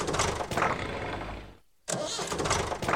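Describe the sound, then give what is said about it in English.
A tractor engine cranks loudly, grinding as it tries to start, falls silent for a moment, then cranks again without catching. No one speaks. “Dummkopf tractor.”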